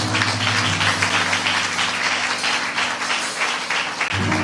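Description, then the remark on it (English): A church audience claps together in a hand clap of praise, a dense, steady wash of applause that fills the whole clip, with low sustained musical tones humming underneath. “Can we give them a hand clap of praise?”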